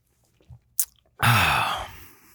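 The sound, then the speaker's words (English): A quick slurp of a sip of Shipyard Pumpkin Head Ale, a pumpkin beer, followed by a loud, breathy exhale with a low throaty tone that slowly fades. No one speaks. “One more sip for the boys.”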